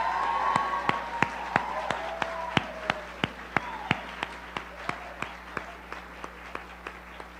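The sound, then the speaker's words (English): Audience applause for city employee award winners at a recognition ceremony: a dense wash of clapping with sharp, evenly spaced claps standing out in a steady rhythm, easing slightly toward the end. No one speaks. “Please give them one last really big, really loud round of applause.”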